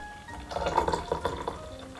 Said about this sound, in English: Once we've poured our glasses out, we will pour our 100 degrees Celsius water into our large teacup with leaves.